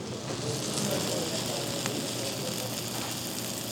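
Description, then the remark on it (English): A steady, dense sizzling and crackling of food on a steaming hot sizzler platter as it is carried to a table, with sharp pops scattered through a constant hiss, consistent throughout; the smoking platter holds sauce, sliced cabbage, carrots and shredded cheese. “The whole thing smokes up the room and crackles as it comes towards the table.”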